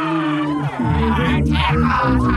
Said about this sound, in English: A giant angry octopus with giant arms roaring out. And this octopus, like all octopi, is very intelligent and very angry.